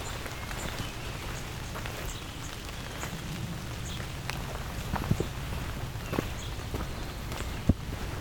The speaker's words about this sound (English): A little bit of rain blowing off the trees here.